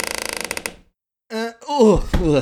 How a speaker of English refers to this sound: All right, I'm going to open up the basement door. Okay.